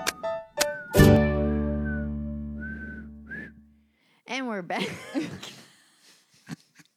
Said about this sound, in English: During the break, I was experimenting with whistling into the mic. That sounded like mostly like blowing. Yeah. It was not like, a lot of blowing. I'm like not very good at whistling.